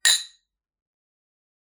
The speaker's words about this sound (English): Well, I will say one big hell of a cheers to Founders on this. Let's not break the glass, though. No. Ready? Cheers.